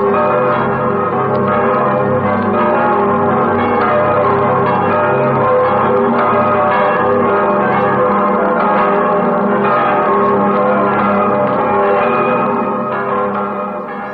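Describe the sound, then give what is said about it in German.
The bells of the imperial cathedral in Aachen ring out loudly and continuously, several bells overlapping in a rich, resonant peal, with no voices present. “Es läuten die Glocken des Kaiserdoms zu Aachen.”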